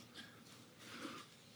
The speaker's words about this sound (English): I love that sound. The rustling pages of the Bible. I love it. I love it so much.